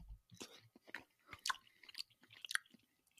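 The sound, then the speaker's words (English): Someone chews a mouthful of Trader Joe's frozen chicken, defrosted in the microwave and cooked on the stovetop, with soft, irregular crunchy and wet bursts of mastication repeating over a few seconds, fairly quiet and with no talking. “All right, I'm going to take a bite of this.”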